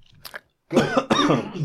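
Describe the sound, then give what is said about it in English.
Two people cough at the same moment: a short throat-clearing rasp first, then a burst of overlapping harsh coughs that break into a second loud hack. “No, we coughed at the same time.”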